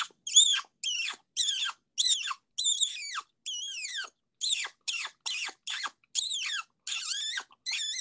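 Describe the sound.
A voice imitates a turkey breeding hen squeal with the lips: about a dozen high, thin, quavering squeals in a steady series, each bending downward in pitch, with short pauses between.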